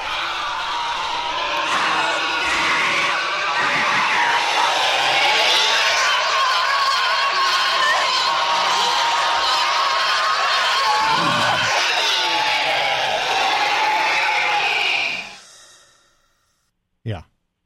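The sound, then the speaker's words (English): A long, blood-curdling film scream, the body snatcher scream from Philip Kaufman's 1970s version of Invasion of the Body Snatchers, with Sutherland in San Francisco, shrill and strangely hollow, holds loud and wavering for about fifteen seconds before fading into an exhale, followed by silence and a single brief click. “There's this horrifying, blood-curdling, almost hollow scream going on.”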